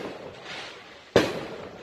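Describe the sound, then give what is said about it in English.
A single sharp firework pop bursts out outdoors shortly before the 4th of July, after a stretch of low, steady hiss, its loud crack trailing off into a fading rumble over the next half second. No one speaks. “Gunfire. No, but it's almost 4th of July, guys.”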